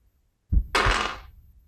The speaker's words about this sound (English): So you spend a couple more minutes wandering these veins, and I'll take a listen roll to follow the sound of a heartbeat, not get lost.